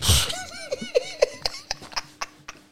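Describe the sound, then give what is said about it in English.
A voice imitates the heavy breathing of a man lying down: a loud huff at the start, then a quick run of short, rhythmic panting bursts that sound almost like laughter, fading toward the end. “this alien of a man here laying next to me. He's breathing like.”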